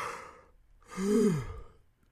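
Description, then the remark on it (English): A single audible yawn: a breathy intake of air, then a drawn-out voiced groan that rises and falls before trailing off into a soft exhale. No talking. “Then you get to hear and yawn.”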